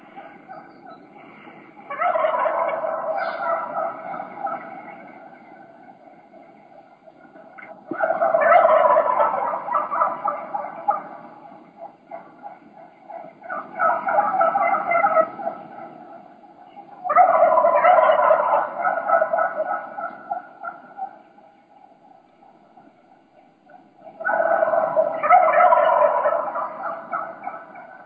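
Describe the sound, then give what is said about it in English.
A large early-season flock of wild turkeys, both hens and gobblers, gobbling from the roost tree in repeated loud bursts, roughly five overlapping rattling gobbles spaced a few seconds apart, with steady clucking and calling between them. “You'll just hear a bunch of chaos. There's a bunch of hens and a bunch of gobblers in the tree.”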